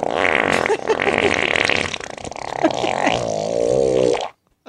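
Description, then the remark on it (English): A long, loud, sputtering fart from a man sitting on a plate of donuts rumbles and flutters continuously for about four seconds, then cuts off abruptly into silence. No voices accompany it. “That is sitting he's sitting on a plate of donuts, farting on them. He's farting on his food right now.”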